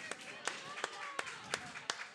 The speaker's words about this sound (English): Round of applause, team five. Only one's getting that one.